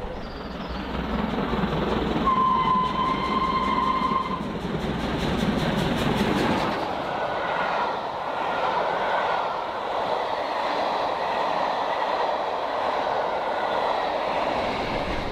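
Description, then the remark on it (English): A passenger train rumbles steadily along the rails, loud, with a brief high whine early on before the roar eases into a lighter, continuous rolling hum, as it heads toward Didcot Parkway station, 53 miles 10 chains from Paddington. “Didcot Parkway is our next station.”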